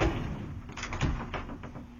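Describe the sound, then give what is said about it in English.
A folding closet door is worked back and forth, giving a quick series of clattering knocks and rattles, moderately loud, with no one speaking. “He did some bit with the folding the closet door.”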